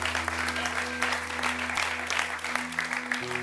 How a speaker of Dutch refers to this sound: Why don't we give all the kids a hand right now? Laten we de kinderen een applaus geven.